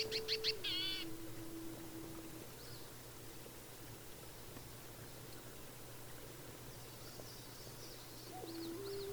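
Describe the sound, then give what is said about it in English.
Spring birds chirp in a quick burst at the start and again faintly near the end, over a steady, low pulsing drone of insects and croaking frogs. The whole scene is quiet. “The birds have returned, and you can hear the pulsing sound of insects and frogs croaking somewhere.”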